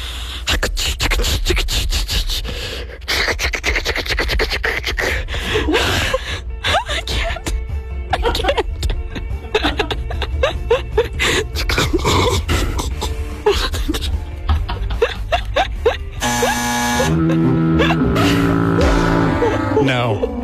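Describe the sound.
A voice imitates the Zone's traffic helicopter, a loud, breathy, rapidly fluttering whir that runs for many seconds before shifting into a more tonal, humming sound near the end.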